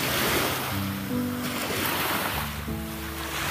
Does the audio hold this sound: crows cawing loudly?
no